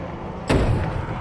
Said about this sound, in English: He was carefully watching his step when he heard a loud bang on the wall next to him. And then another.